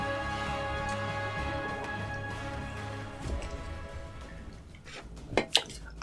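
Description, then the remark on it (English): Someone takes a drink of Fanta soda: a couple of short, wet slurping sips come near the end, over a steady low background hum. “Alright, time for a sip of Fanta.”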